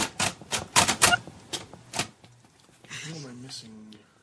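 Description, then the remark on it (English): Several sharp, loud mechanical key strikes from a braille writer clatter in quick irregular bursts, followed by a quieter stretch where voices begin talking. “Well, it's my braille writer.”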